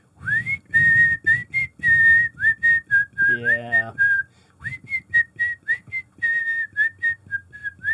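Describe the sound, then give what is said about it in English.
A person whistles a short tune, the clear bright notes moving in steady phrases with brief breaths between them, accompanied by faint rustling and a low background hum. “By way of introducing my next pick, I will simply whistle.”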